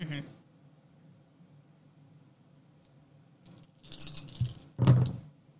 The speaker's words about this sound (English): Sorry, I have to grab dice.